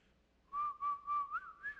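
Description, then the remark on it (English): A short family signal tune whistled by a person, about five steady notes in a gentle rhythm ending on a rising slide, clear against a quiet background with no talking. “if ever she couldn't see me, she would whistle. Now, I'll try to whistle it, but I'm terrible.”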